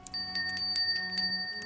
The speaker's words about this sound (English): So hang on, why don't I just ring the bell?